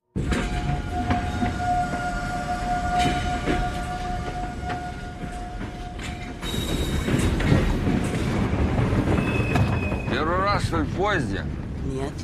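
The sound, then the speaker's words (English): A train heading to Murmansk in the Arctic Circle rolls steadily along its rails, a continuous rumble with a sustained tonal whine, later joined by brighter screeching and squealing of wheels as it goes. “On the train, at least there's one bit of good news.”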